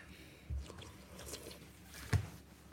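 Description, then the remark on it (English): Two short, hesitant slurps of hot soup, soft and wet, spaced well apart, the second a sharper, quick suck of air. No one speaks. “That was the tentative slurp of somebody who realises that the soup is too hot as they start slurping.”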